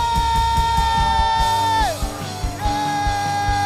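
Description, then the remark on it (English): A loud, continuous roar of many voices shouting praise and cheering together, with a sustained high, ringing tone held over the crowd that bends downward partway through. “Come on, lift up a shout of praise right now in this place.”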